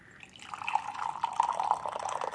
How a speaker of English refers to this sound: Oh, it's so hot and moist. It feels great. Oh, listen to those frogs.